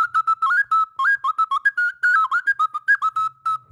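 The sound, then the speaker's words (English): A bright whistle, played as a sound effect, sounds a quick run of short notes that rise and fall in pitch like a playful tune, continuing steadily for several seconds with no voices. “Can I play a song? I need a whistle.”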